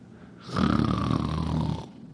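A single long, rumbling snore lasts over a second, with a buzzy, rattling low tone and a raspy hiss on top, rising abruptly and cutting off. No one talks.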